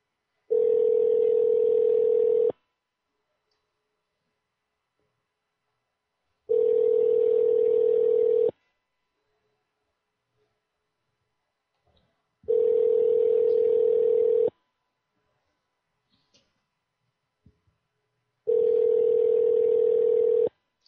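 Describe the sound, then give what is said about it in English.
A phone line rings out with no answer: four steady, buzzy ringback tones, each about two seconds long, separated by evenly spaced silent pauses. Loud and clear, with no voices. “Nobody's picking up tonight.”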